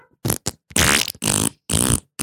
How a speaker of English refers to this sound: Oh, my God. It's just the same sound effects. Yeah, they don't even change the goddamn sound effect. It's like they just play it again. It's like they just Googled fart sounding board and then just went.